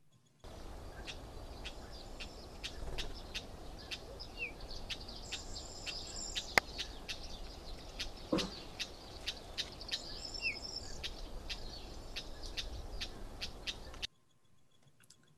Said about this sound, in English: And the bird is Cyprus Wheat Ear.